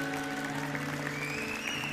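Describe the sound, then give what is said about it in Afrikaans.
A church audience claps steadily for everyone who prayed a prayer accepting Jesus, a dense, even wash of many hands that holds at the same level throughout, with a soft sustained musical tone humming beneath it. “Kerkfamilie, kom ons geef vir elke daai gebed het die heel beste hande klap.”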